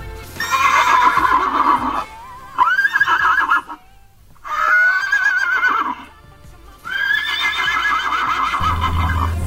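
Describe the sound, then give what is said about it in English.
Horses at a beach neigh and whinny in three loud, drawn-out calls with quivering, descending pitch, separated by brief pauses, with no one talking. “Hurry, The horses are here.”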